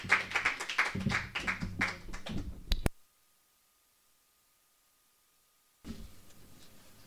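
Dense crowd applause at a storytelling evening, many overlapping claps for nearly three seconds, then a sudden cut to silence for about three seconds before a softer burst of sound returns.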